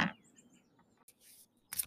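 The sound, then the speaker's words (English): Quiet papery rustling and a brief fluttery riffle of playing cards being shuffled by a seated person, bracketed by soft taps, with faint bird chirps in the background. “We're going to shuffle some cards while I'm sitting here.”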